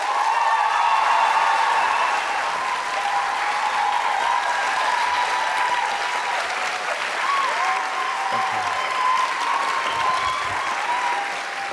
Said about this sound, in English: And now please welcome with a big round of applause. Please welcome Jenna Coleman and Peter Capaldi.